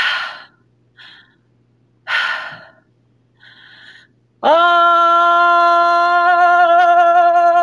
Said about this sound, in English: So I'm going to take three big breaths. I'm dropping my jaw open. Okay. And I'm breathing. I have a hand on my low belly because I want to make sure that the breath is going there. And then when I exhale, I just allow the breath to fall out.